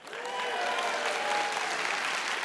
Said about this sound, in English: Are you ready to clap? Yes. Are you ready to cheer? Yes. Here we go. It's time for the offering.